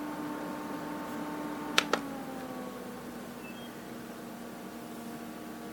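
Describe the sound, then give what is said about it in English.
An air conditioner fan runs at speed 2 with a steady whooshing drone and low humming tones. Two quick sharp clicks come early on as its button is pressed, and the drone then eases slightly lower. “So you can kind of tell the difference in the sound.”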